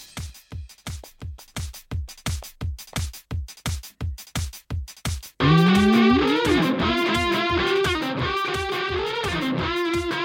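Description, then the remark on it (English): Top Trumps game segment theme music: a steady, evenly spaced pounding beat for several seconds, then a sudden loud burst of dense, distorted, synth-heavy music with a bright, buzzing melody. “Well, here was the Top Trumps theme. We'll hear it again.”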